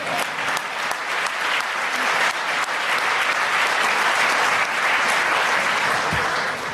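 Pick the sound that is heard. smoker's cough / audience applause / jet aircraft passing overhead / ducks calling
audience applause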